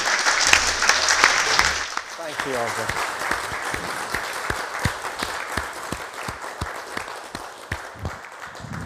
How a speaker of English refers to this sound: Well, thank you. Should we give a big round of applause?